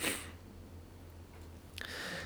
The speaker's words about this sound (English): Excuse me, I feel a sneeze coming on.